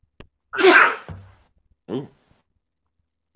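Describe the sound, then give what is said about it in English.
A single loud sneeze bursts out with a sharp noisy blast, followed moments later by a brief voiced sound and short sniff-like noises. “You get the no. sneeze. You get the sniffle.”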